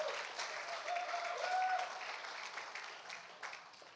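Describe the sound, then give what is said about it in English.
An audience breaks into steady applause, a dense wash of clapping that holds strong for a few seconds before gradually thinning out, with a brief tonal whistle or cheer rising over it. “Give them a round of applause very much.”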